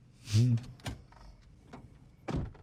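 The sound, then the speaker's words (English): A few dull, heavy knocks on a door, spaced irregularly with a longer pause before the last one, moderately loud alongside a brief muffled voice. “Oh, he's just knocked.”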